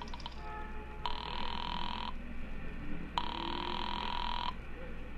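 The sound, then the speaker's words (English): At a payphone in a filling station, a nickel is dropped in and a number dialed: faint clicks and a low steady hum give way to a telephone ringing on the line, two long buzzing rings separated by a pause, heard through a receiver with no one speaking. “instead dropped the nickel in and dialed Republic 2809 again”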